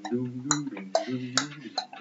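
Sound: countdown clock ticking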